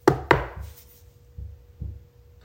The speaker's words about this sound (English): So you're going to hear me say that and then listen for the knock. Can you knock on things? Can you knock on this table like me?